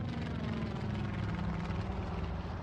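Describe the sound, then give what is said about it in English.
A small propeller plane carrying state investigators touches down at a local airstrip on Prince of Wales Island. Its engine drones steadily in a continuous low rumble with a buzzing hum that holds even in loudness throughout, with no voices. “the small aircraft carrying state homicide investigator Randy McFerrin, a state fire investigator, and a crime scene technician touched down at a local airstrip”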